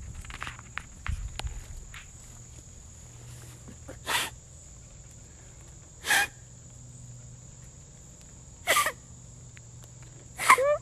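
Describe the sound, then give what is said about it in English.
A person blows a blade of grass as a whistle to imitate a deer call: four short, harsh, reedy squawks spaced a couple of seconds apart, fairly loud, over a steady high insect-like hum and some early rustling. “That's what a deer sounds like? Not really. It depends on the blade of grass you get.”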